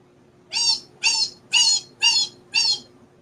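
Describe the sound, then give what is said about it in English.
A voice mimics the screeching Psycho shower-scene strings with five sharp, high-pitched shrieks, evenly spaced about half a second apart, loud and alone over a faint low hum. “knew when they heard like that music. Wow. They're like, oh, that's from Psycho.”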